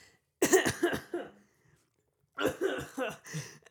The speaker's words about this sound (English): I'm not coughing comically.